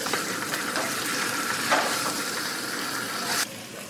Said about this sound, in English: It's frying in butter on the pan.